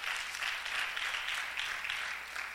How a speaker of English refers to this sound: Come on, let's give the Lord a great clap offering. Amen.